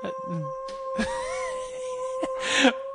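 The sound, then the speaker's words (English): A dog named Odie howls in drawn-out, wavering moans that rise and fall in pitch, over the steady high siren of a passing fire truck that runs the whole time, with a few brief noisy bursts. “No, if y'all don't know, we just had a fire truck go by, so. He's a fire dog.”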